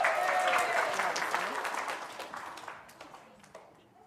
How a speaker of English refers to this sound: Give her a clap.